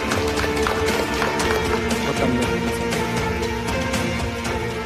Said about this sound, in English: Please give big round of applause to Vitaly Lisovyy.